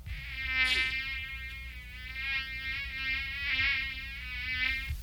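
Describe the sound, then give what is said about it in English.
A continuous high-pitched whine of mosquitoes buzzing, steady and droning with slight wavering in pitch and loudness throughout, no voices. “These are mosquitoes.”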